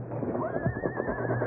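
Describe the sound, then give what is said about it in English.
A frightened horse being led whinnies in a high, wavering cry lasting over a second, fairly loud, over a low rumble with faint hoof movement. “Better lead the horses. Pretty scared.”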